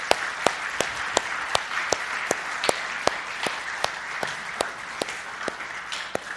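A church audience in Lakeville breaks into a round of applause praising God for the last 40 years, a dense, steady wash of many hands clapping with a few sharper claps standing out in a loose rhythm, sustained without talking over it.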